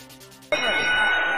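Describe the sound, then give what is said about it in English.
A single loud metallic ring bell strike starts the Bret Hart versus Yokozuna wrestling match at WrestleMania 9, ringing out sharply after a brief quieter lead-in, its bright tone sustaining and ringing on steadily to the end. “The bell has rung. The match is underway.”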